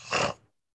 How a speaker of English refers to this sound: Oh, this audio is going to be horrendous with me sniffling.